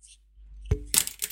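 Two pens dropping while being juggled: a dull thump followed by a quick burst of bright, rattling clatter as the small hard pens hit and bounce on a surface, with no one talking.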